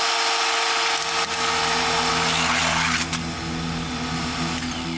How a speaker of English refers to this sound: This is a chainsaw. It's real. It's dangerous.